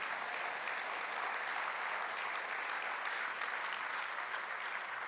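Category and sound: crowd, audience applauding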